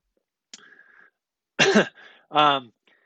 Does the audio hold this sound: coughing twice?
yes